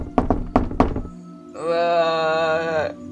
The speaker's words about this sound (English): Yes, you look through the spyglass of the door, and you don't see anybody, but you do hear another knock on the door.